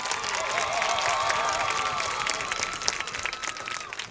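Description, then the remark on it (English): A crowd claps and cheers steadily for a newly announced homecoming queen, dense applause filling the whole stretch with high-pitched whoops and shouts rising over it, holding loud throughout before thinning slightly at the end. “Let's give a round of applause for our homecoming queen,”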